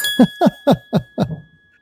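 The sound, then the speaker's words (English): A bell rings in five quick, evenly spaced strikes, each a bright metallic clang, with a steady high ringing tone that lingers and fades after the last strike. No one speaks. “The bell is being rung right now.”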